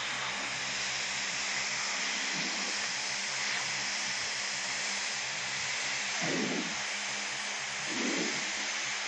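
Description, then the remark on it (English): A light airplane's engine, throttled back from 2,500 RPM so the trimmed airplane descends on instruments, drones steadily at reduced power, a continuous low hum wrapped in broad rushing cockpit noise, with a couple of brief swells in the rumble and no voices. “If you're flying along a level at 2,500 RPM, and the airplane's trimmed for level flight”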